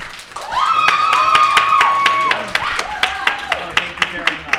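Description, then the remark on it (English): During an audience vote by applause for a panel member, a burst of clapping, sharp and fairly evenly spaced, with a drawn-out whooping cheer rising over it before the claps thin out into a few scattered ones. “So we're going to do it by applause.”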